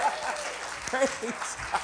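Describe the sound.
A crowd claps steadily throughout, a dense, continuous patter of many hands, with a few voices whooping and calling out over it.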